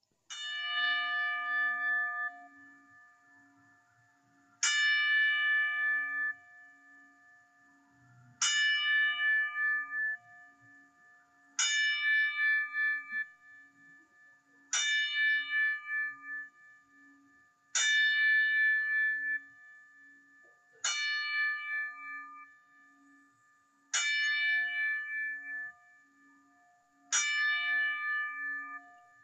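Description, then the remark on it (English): A single bell tolls slowly and evenly, about nine loud, clear strikes roughly three seconds apart, each ring hanging and fading before the next. It is a ten-bell salute honoring Scott Hall and DeJon Packard. No voices accompany it. “And Mad Sticks, if you can do the 10 bell salute for us, my friend, that would be great.”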